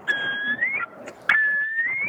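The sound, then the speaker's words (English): A one-piece wood duck call blown twice, making two thin, high, squealing whistles that slide upward in pitch, each under a second long, separated by a short pause, with no talking. “People say, oh, you don't need a wood duck call to call in wood ducks.”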